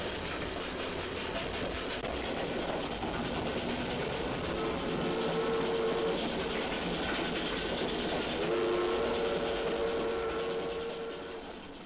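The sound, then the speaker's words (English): A railroad engine pulls a train rumbling steadily along the rails, its broad mechanical roar filling the scene with a faint clatter, while a couple of sustained horn-like tones sound midway and again near the end. “A railroad engine turns its rhythms into power that carries a train rocking across the rails from city to distant city.”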